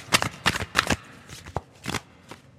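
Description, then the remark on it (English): A deck of cards being shuffled for a card reading, several quick riffling bursts of papery flutter in an uneven rhythm, with brief pauses and a soft tap between them. No one speaks. “I'm gonna move my mic so that you guys don't get full shuffling noises action from me, because I know that it's kind of an irritating noise.”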